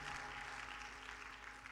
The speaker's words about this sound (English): Let's clap our hands to the Lord and give him a great praise right now.